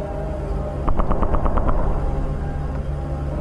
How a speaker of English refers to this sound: The jet started firing at the asteroids.